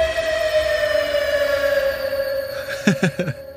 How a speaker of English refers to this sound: If we had a siren sound, we'd play it right now. Right. Cue siren sound.